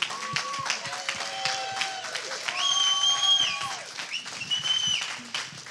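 An audience claps steadily in a dense, continuous patter for several seconds, with high cheers and whoops rising over the applause and swelling toward the middle before easing off.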